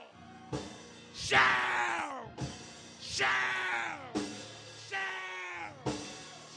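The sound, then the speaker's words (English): A church audience erupts in loud, overlapping yells and shouts, surging in several waves over a few seconds, with many voices rising and falling together, reverberant. “Because they that wait upon the Lord, throw your head back and yell, shout!”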